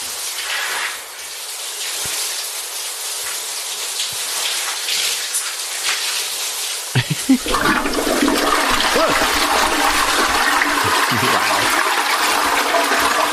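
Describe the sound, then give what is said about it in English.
A toilet flush sound played by the Alexa Burglar Deterrent skill in its bathroom mode, set to high activity with background music off: a steady hiss of running water, then a sudden louder, fuller gush that swirls and roars on without any voices. “Starting bathroom with activity level high and background music off.”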